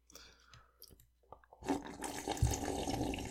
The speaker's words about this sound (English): Yeah, that slurp. Ooh. Yep.